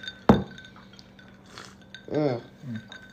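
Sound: glasses clinking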